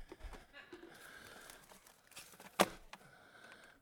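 Paper towels from Sam's crinkle and rustle for a few seconds, broken by one sharp, loud tearing snap near the end before the crumpling settles down again.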